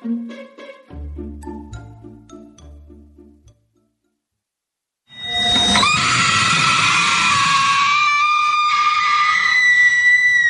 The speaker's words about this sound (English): That screech you hear was Lydia Martin, a teenage banshee on the MTV show Teen Wolf, which just finished shooting its sixth and final season.